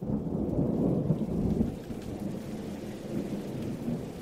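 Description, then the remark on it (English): Steady, heavy rain pours down in a dense continuous wash, with a deep rumbling undertone like thunder rolling beneath it. No voices are heard. “watching the rain fall sideways.”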